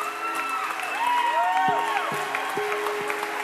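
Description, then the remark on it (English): An audience cheers and applauds steadily, with dense clapping under whoops and sustained shouting voices, a loud continuous roar with no lulls. “Yeah, you guys, we can cheer.”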